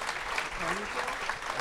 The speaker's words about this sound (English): But round of applause for everybody for doing such a good job, making the effort.